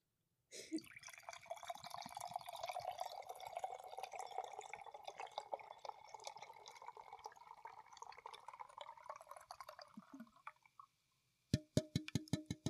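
Hard seltzer pours steadily from a can into a glass for about ten seconds, fizzing, then a brief pause before a few bright, sharp clinks.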